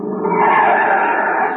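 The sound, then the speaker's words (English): A car pulls up with tires skidding loudly, a sustained screeching squeal lasting over a second, with no voices present. “Oh, that must be his car now.”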